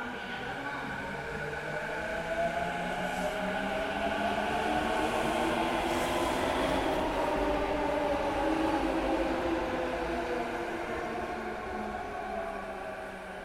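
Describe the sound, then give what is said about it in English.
A train in Japan runs steadily along the rails, a continuous rumbling roar layered with whining motor tones that rise and fall, even in loudness throughout, with no one speaking. “Train journeys were unsurprisingly a huge part of our time in Tokyo.”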